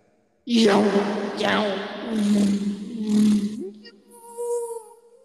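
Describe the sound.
A person vocally imitates a jet boat, like a motorcycle engine on the water, a buzzy sustained drone with rising revving bursts over about three seconds, followed by a fainter, higher whistling tone as it trails off.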